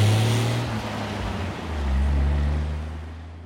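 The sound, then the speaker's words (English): A car engine drones low and steady while a broad rushing wash of icy water surges around it, swelling midway as the vehicle pushes through on a steep, unpaved mountain road where ice and water cascade from the peaks above. No voices are heard. “Icy water.”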